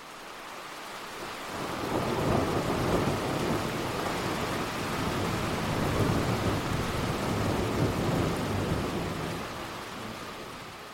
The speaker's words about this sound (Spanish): It is time to venture into the storm.